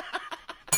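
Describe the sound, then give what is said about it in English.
A few quick bursts of muffled laughter, then a single bright bell strike rings out sharply right at the end, fairly loud; the bell is rung as a reward for a good question. “You get the bell.”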